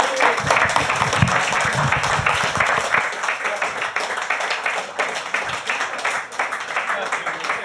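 A crowd applauds steadily for several seconds, a dense wash of many hands clapping at once. The applause stays loud and even, with a little low murmur of voices in the first few seconds.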